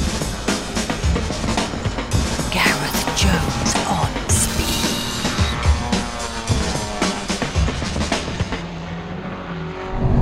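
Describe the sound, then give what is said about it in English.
Steady, loud roar of a car travelling at speed on the M6 motorway, heading south towards London and approaching the toll booths on the Midland Expressway, with constant tyre and engine noise and occasional whooshes and faint whines, no voices. “I'm on the M6 heading south towards London, and as we speak I'm approaching the toll booths on the Midland Expressway.”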